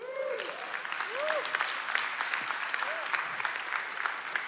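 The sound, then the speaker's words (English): An audience applauds steadily, a dense wash of many hands clapping at an even level throughout, with a few brief voices rising faintly through the clatter. “It merits a hand clap”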